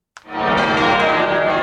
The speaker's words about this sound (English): The bells toll for the Queen as guests arrive at St. Paul's Cathedral in London for the Thanksgiving service, including former PMs, the Mayor of London and ministers.